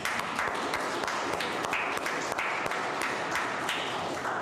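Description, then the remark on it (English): An audience applauds in a dense, steady wash of many hands clapping, holding an even loudness for several seconds with no one speaking over it. “Can we applaud?”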